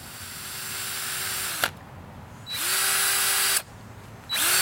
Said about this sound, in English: In fact, the wood is what started this whole little experiment when a big branch fell from the red oak that towers over my backyard. So the first step is drilling some holes in the log.